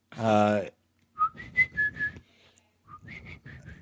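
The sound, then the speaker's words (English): A brief hummed or voiced note, then an airy, breathy human whistle playing a short tune in two phrases, fairly soft, with audible breath noise under the tones. “It's too airy of a whistle.”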